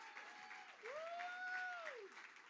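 A standing audience claps steadily as a crowd, the dense patter of many hands running throughout, while sustained organ-like notes glide and hold above the applause.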